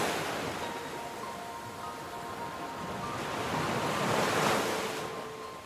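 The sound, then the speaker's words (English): Gentle, calm ocean waves lap steadily against the shore at night, a soft continuous surf that swells slightly louder near the end before easing back, with no voices present. “The calm waves that now lap the shore, mixed with the clean, clear air of the night, begins to make you tired.”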